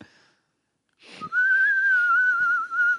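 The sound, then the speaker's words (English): A person whistles a sustained, wavering high tone for about two seconds, imitating the call of a Mist Haven Finch, after a short burst of breathy noise. No one speaks. “That was my bird call. That was a Mist Haven Finch.”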